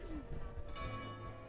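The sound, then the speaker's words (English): A church bell in Rome, at a church that rings every quarter hour, strikes once, its ringing tone lingering and slowly fading over a low, faint background hum. “Oh, I can hear a bell. Is that here? Yes, that's here.”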